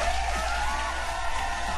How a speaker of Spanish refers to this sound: ¡Un aplauso!